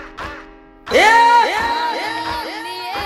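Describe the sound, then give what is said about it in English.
Loud, excited screaming and whooping from a group of voices bursts in after a brief quieter moment, with repeated rising and falling cries that continue steadily to the end. “And the screams from Pure Vibes.”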